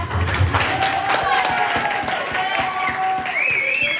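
Scattered, uneven hand claps ring out over a murmuring crowd, with a few rising whistles cutting through toward the end.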